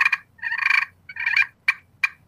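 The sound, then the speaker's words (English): A turkey call played gives a quick cluck, two rolling, trilling purrs, then two sharp single clucks, with no talking. “But again, the versatility of the vocalizations, like here's, you know, the cluck and purr, and I'd prefer a slate call, a slate surface for maybe the really quiet stuff, but absolutely just for the ease.”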